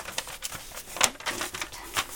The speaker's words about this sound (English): So I'm just going to put the phone down, flip the page here.